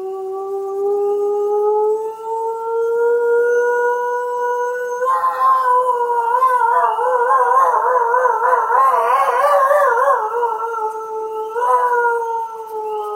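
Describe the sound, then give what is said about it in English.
A wolf pack howling: one long, steady, tentative howl from a lone wolf rings out, then several higher, wavering voices of young wolves pile in, forming a loud, tangled chorus before a single howl carries on. “sound you're going to hear a very tentative howl from a lone wolf. And then after that, the pack of wolves will start opening up.”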